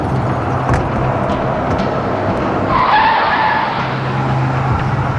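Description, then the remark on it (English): An Oldsmobile's tires skid and squeal loudly over a steady, roaring engine, the screech rising in the middle of the stretch before the rumble carries on. “We'll see how long he lasts under the wheels.”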